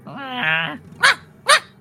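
A dog lets out a drawn-out, high whine, then gives two short, sharp barks about half a second apart, fairly loud, with no one talking.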